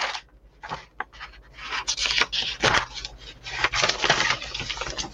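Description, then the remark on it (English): Pages of a scientific paper being flipped through to show its reference list, a steady run of dry rustling swishes and crinkles with no one speaking. “Now, you want to see the reference list for this paper? Show it to you right now.”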